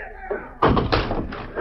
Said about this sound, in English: Bring up that battering ram. Stand back there so we can smash her against the door. Get back. Stand back so they can push the door in. All right, here we come. Let her go, boys.